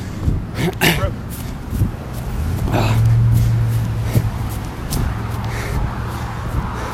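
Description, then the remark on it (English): After-school road traffic rumbles past, one vehicle's engine swelling and fading midway, over a steady low hum, with heavy breathing and footsteps from someone running. “The after school traffic.”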